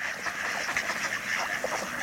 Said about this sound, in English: Ducks float in protected bays.